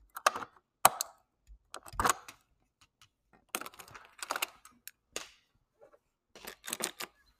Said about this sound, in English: Now I go outside. I am in search of more sounds to record in high quality audio. Here's the sound of a door unlocking.